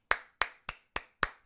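A person claps for themselves after a gym workout in which they burned 1,000 calories. They clap five or six times in a steady, evenly spaced rhythm, each sharp clap quickly fading, with no talking.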